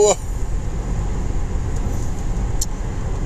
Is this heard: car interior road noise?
yes